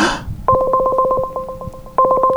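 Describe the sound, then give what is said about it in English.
An outgoing call's ringing tone plays on a Nexus tablet: a steady electronic dual-tone ring with a fast warbling pulse, briefly pausing before starting again, fairly loud, with no talking. “It's ringing.”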